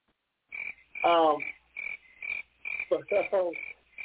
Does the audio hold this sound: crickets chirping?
yes